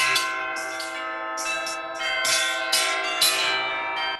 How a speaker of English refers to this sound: You might then imagine his inexplicable dread when, as he looked, the bell begins to ring, softly at first, and then louder and louder as it is joined by all the bells in the house.